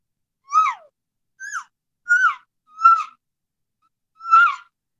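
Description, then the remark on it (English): Five short, high-pitched elk calf mews made with a calf call by a hunter calling to an elk, each a nasal squeal that drops in pitch, spaced about half a second to a second apart, with a longer pause before the last one. No one speaks. “I hit this calf with a cow sound too. Excuse me. And I hit him with this, the calf sounds.”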